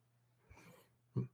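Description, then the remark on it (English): A soft, breathy burst is followed a moment later by a sharper, louder sneeze, over a faint steady low hum. “Bless you.”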